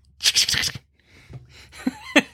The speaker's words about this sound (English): What are you taking with you to the movies? I'm taking Tic Tacs. Tic Tacs. Just hear me open up in the movie theater.